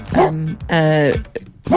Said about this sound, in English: Another dog.